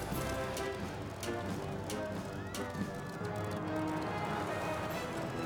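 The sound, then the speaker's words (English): Horse hooves clip-clop at an uneven pace as a horse is ridden, over a dense, steady background, with sharp knocking hits scattered across a few seconds and indistinct voices murmuring underneath. “Horse riding.”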